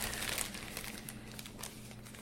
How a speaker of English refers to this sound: I'm going to draw the name. My hands are rifling through the slips of paper.